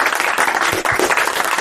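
applause

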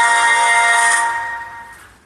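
phone message notification alert

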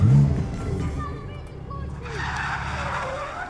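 car engine revving

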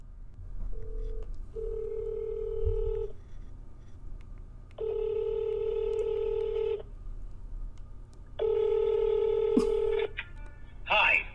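telephone number being dialed

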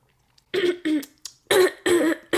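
throat clearing

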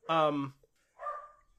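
dog barking

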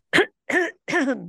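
throat clearing

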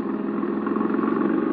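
car engine driving

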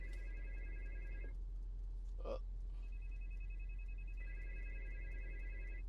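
phone ringing

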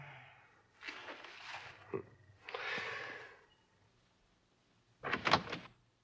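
door opening

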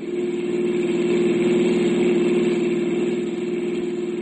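car engine running

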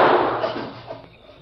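gunshot

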